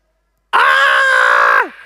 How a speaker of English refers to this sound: Maybe do a little bit of scared sound, you know, a bit of a scream.